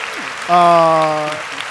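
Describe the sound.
A brief burst of crowd applause, steady clapping throughout, with a sustained voiced shout or cheer rising over it near the middle before fading back into the clapping.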